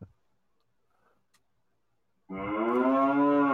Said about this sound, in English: I hear the cow. Can hear the cow.